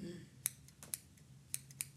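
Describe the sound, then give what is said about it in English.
A pair of scissors held in a hand snips four times at an uneven pace, each cut a crisp metallic click over a faint low background hum. “I have here in my hand a pair of scissors.”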